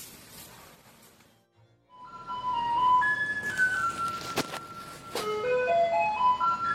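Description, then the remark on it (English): A garbage truck's electronic music jingle plays a simple, bright melody over steady street rumble, starting after a brief lull and continuing fairly loud, with a couple of sharp clanks midway. “Household garbage and kitchen waste is quickly handed over to garbage trucks that visit communities across the country.”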